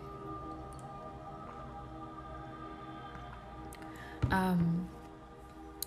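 Someone takes a drink of water: a short gulping swallow about two-thirds of the way through, following several seconds of quiet room tone, with no talking.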